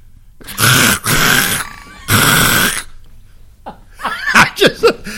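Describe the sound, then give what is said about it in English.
A person imitates a screaming squirrel with two long, harsh, rasping shrieks, then a burst of quick, high chattering squeaks and chirps. “I think you literally just duplicated the sound of a screaming squirrel.”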